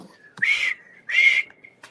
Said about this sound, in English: You only blow your whistle when a foul occurs.